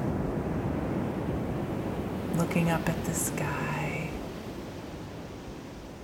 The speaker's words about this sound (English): If your eyes are closed as you listen to the waves, and imagining you are right there too on this cool, damp, crisp, and fresh beach.